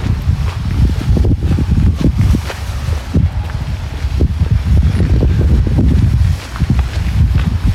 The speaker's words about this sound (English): It's chilly. It's supposed to get really warm though, like I said. +8 and raining on Christmas. Ridiculous. Bit of wind, don't say that much. You can probably hear that.